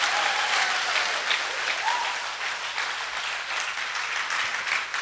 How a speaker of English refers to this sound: Come on, give the Lord a big clap and praise God.